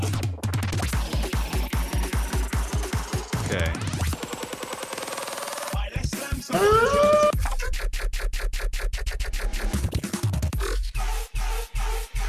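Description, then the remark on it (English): A loud, chaotic electronic track with rapid stuttering beats, glitchy bursts and sweeping synth tones, shifting abruptly partway through into dense, jittery rhythmic pulses with heavy bass. “Everything you're about to hear was this is the song.”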